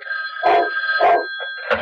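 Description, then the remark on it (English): An old-fashioned telephone bell rings in short repeated bursts, loud, with a steady electric tone humming between the rings. “And the telephone rang several times each day.”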